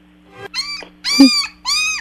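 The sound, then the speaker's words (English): A puppy whining in high, nasal cries: a faint short whimper, then three drawn-out whines with slight pitch bends, fairly loud, over a low steady hum. “My wall says puppy whining.”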